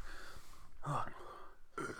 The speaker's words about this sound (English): Oh. Oh. The burp tastes good. Yeah, it did. I had chicken parm for dinner.